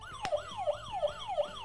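A contestant's buzzer in a multiple-choice quiz blares a siren sound, a rapid electronic wail sweeping up and down about five times in quick succession, loud with no talking.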